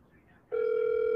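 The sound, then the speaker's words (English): An outgoing phone call's ringback tone, played on speakerphone, cuts in abruptly after a faint murmur of background noise, then holds as one steady, loud electronic tone through the rest of the moment. “Oh, I know he got his phone. There's no way he doesn't. Better pick up”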